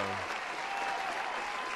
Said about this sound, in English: Round of applause. Yeah, yeah. Pause for applause.